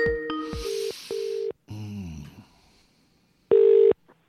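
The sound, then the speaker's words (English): A quick series of steady telephone dialing beeps, each a flat electronic tone, followed by a short wavering chirp and then one final beep after a brief pause. No one speaks. “If I miss your call, I give you a call back.”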